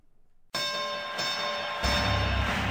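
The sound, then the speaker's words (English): A bell strikes suddenly and rings on loudly with a bright, sustained metallic tone, while a low rumble swells underneath toward the end. “Just ring the bell.”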